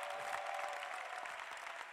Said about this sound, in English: Clap your hands for Jesus. Keep clapping.